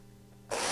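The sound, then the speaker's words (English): An electric chainsaw hums steadily with a tonal motor whine, then suddenly roars into a loud, harsh buzzing rasp halfway through, with no talking. “All right, so it's not that loud. It's electric. I didn't get a gas-powered one, all right?”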